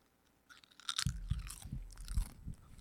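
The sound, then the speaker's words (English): Loud crunching as a woman bites into a crisp potato chip, followed by a few seconds of wet, crackly chewing with repeated sharp crunches and no talking. “All right, she's taking the crunch.”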